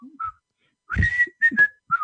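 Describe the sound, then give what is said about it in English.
A man whistles a short old TV show theme tune in a few wavering, breathy phrases with brief gaps between them; the notes are thin and somewhat unsteady. “I can't whistle, so that's about as good as I get.”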